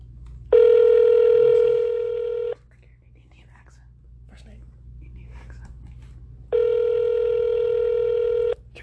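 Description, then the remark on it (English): A phone line ringing back during a call to Red Roof Inn: two long, steady electronic ring tones, each about two seconds, separated by a pause of several seconds, heard clearly over a faint low background hum. “We're calling Red Roofin right now.”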